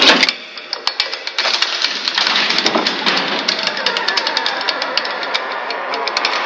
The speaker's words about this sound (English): I startled at that, then again at the sudden movement of the bookcase itself. I heard a hidden mechanism at work as the bookcase, which was actually a door, slid back, then swung in, revealing a stairwell that descended into total darkness.